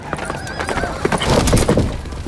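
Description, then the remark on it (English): A horse ridden by the young king Henry, lance tucked under his arm, gallops toward 40 knights of another team and whinnies loudly over the rapid, drumming clip-clop of hooves, with a sharp thud partway through and a rising burst of noise toward the end. “Despite the odds, he tucks his lance under his arm and gallops towards the danger.”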